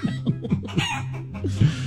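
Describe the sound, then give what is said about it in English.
Chickens cluck in a quick, steady series of short calls, fairly loud, as they run around a barnyard, with a longer drawn-out rooster call near the end. No one speaks. “You hear them all? They're running around the barnyard right now.”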